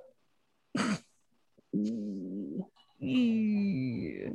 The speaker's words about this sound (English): Can you hear those dogs? A little bit. Those are my next door neighbor's dogs. They have a lot of dogs and they like to fight all the time.